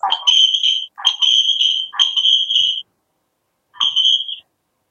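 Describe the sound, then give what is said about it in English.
Loud, shrill electronic audio feedback squeals in four sustained bursts, three back to back and a final one after a short pause, each a piercing, ringing whine echoing between a phone and a laptop. “Oh God, there's an echo. Could you hear that screeching?”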